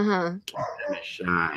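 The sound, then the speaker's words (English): A dog named Molly lets out a couple of loud, strained barks with a whiny, yelping edge, separated by a brief pause, after hearing a garbage truck outside. “Oh, but my dog just heard some sort of garbage truck outside.”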